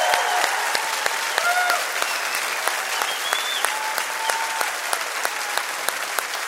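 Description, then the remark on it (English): Sustained applause from a sizable audience at Red Rocks Church, given for everyone who meets at the Rocky Mountain MS Center; dense overlapping claps fill the space steadily for several seconds, with a few faint whistles or cheers rising above it. “But now, can we give the most gracious round of applause to everyone that meets at our Rocky Mountain MS Center?”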